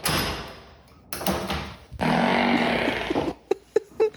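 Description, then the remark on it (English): A long, growling fart rumbles for over a second with a low, rough buzz, followed by a few short puffs, all echoing off hard bathroom walls with no one speaking. “No, that one growled.”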